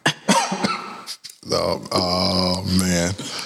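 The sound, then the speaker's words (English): A man coughs in a few quick, harsh bursts, then lets out a long, strained, throaty vocal sound, like a drawn-out hacking groan. “Oh, this man coughing COVID on.”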